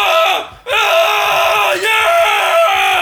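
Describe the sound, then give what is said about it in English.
A man lets out a loud, sustained, strained scream, briefly breaking for breath before carrying on at full volume, imitating how he screams at climax. “Yeah, no, I, like, fucking make the walls, like, shake and rattle, you know what I mean? I'm, like, screaming, like, yeah!”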